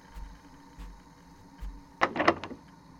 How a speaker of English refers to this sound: If I could just open the fucking door, I'd open it and walk outside and leave. You can't open it!